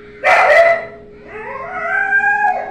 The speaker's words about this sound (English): Got the dogs in the background. They mad as shit right now. Need to sit their asses down.